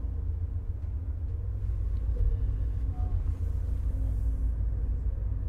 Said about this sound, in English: The time is 8:06 p.m., and we are pulling out of Union Station just 1 minute late.